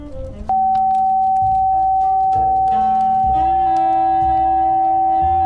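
Electronic frequency tones played as tones said to normalize adrenal function, create hypertension and normalize the nervous system: a steady, high-pitched sine tone starts abruptly and holds unbroken for several seconds, loud and constant, with other lower tones and a shifting hum layered beneath it.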